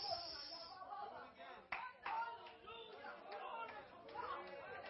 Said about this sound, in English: Come on, let's clap our hands unto the Lord one more time.